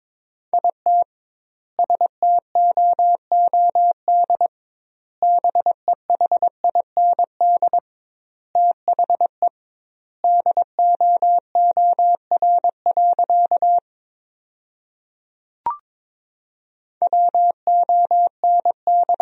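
A single mid-pitched Morse code tone keys rapid dots and dashes at 22 words per minute, sending sentences made from the 500 most common words with double word spacing, in word-length bursts with pauses between groups and one brief click partway through; no voices.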